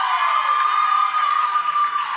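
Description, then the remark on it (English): A live audience cheers and applauds for people who salt the chips at Mexican food restaurants, in a dense, steady, loud roar for about two seconds, with a sustained shrill cry riding above the crowd noise. “When you go to a Mexican food restaurant, round of applause if you salt the chips.”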